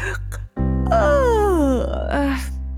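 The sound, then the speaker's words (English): A drawn-out, voiced yawn, fairly loud, its pitch sliding steadily downward before tailing off, likely a person acting it out, with a steady low hum underneath. “Little Teddy's yawning. He's very tired. Can you yawn?”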